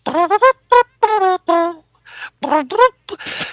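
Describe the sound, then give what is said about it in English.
A string of short, voiced gasping breaths builds up, then a breathy, noisy burst of a sneeze lands near the end, fairly loud with no talking. “well, hang on a second, I'm going to sneeze.”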